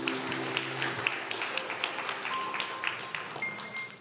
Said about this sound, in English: Let's just give them one more clap offering of praise.